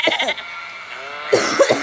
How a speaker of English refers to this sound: That's a lamb? A sheep? It's a lamb slash sheep, so I got both. It's a goat. It's one of them. It's a sheep.